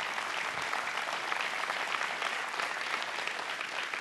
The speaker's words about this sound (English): And y'all give the staff a hand clap of praise for all that they do.